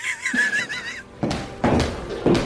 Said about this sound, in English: Okay, mom just got back from work. Sounds like she's in her heels and she's got her car keys.